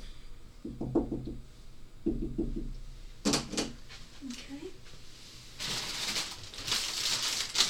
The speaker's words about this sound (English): Shall I knock on the door? Yeah, knock on the door.